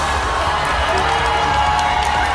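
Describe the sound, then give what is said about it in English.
A large crowd of fans boos Lisa Rinna in a loud, sustained roar of many voices, filling the whole moment with a dense, continuous wall of disapproval. “Today, Lisa got booed and flipped off fans.”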